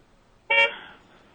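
A single short, bright car horn honk blares out loudly and close, then quickly fades, with quiet background before and after.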